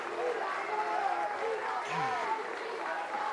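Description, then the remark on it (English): A crowd of spectators at a baseball game claps steadily in sustained applause for a player hit in the side of the helmet, mixed with cheering and overlapping voices from the stands, at fairly even loudness throughout. “People are clapping for him.”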